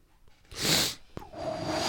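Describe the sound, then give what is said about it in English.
A deep, hissing breath drawn in, followed by a brief click and then a steady, breathy blowing exhale that carries on to the end. No one speaks. “I'm going to inhale.”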